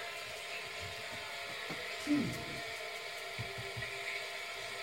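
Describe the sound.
A cat steps on an alarm clock radio, setting off a steady hiss of static with scattered mechanical clicks and a short rattling bump midway, while a voice speaks briefly.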